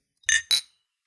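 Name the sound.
glasses clinking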